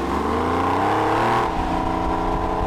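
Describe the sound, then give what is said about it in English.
The air-cooled engine of a Porsche 993 Carrera 4S sports car revs loudly and steadily, its harmonic tone rising and holding before dropping into a rougher, lower growl near the end, with no voices. “And even I'll admit, even though I have a water-cooled car, the air-cooled cars do sound good, don't they? Oh, those sound so good.”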